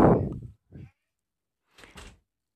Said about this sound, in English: Oh, sorry, you guys got a cat in here.